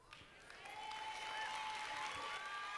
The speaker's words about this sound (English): And women, I'm glad y'all clapping.